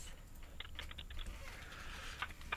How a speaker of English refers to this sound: Okay. Your first word this morning to be added to the spreadsheet is higher. That's H-I-G-H-E-R. I can hear you typing